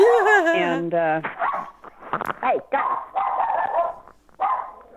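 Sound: dogs barking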